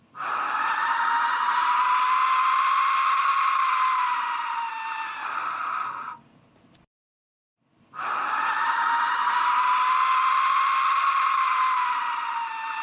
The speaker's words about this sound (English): to the back of the skull with the jaw held open, and as the user breathed softly through the skull, it would make a high-pitched noise, which definitely sounds, if you listen closely, like souls screaming in pain. You're about to hear that right now.